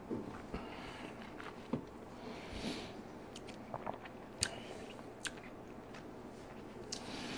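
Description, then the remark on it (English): Someone sips the last of a glass of Blanton's Gold Edition whiskey with water, with soft slurping and scattered wet mouth clicks and smacks over a quiet hush; no one speaks. “All right, gang, I got one little sip here left in the glass. I'm going to kill it.”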